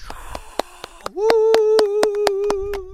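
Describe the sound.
Steady, evenly spaced hand claps, about a dozen sharp claps in a quick rhythm, joined partway through by a loud, sustained cheering voice holding a high note over the clapping.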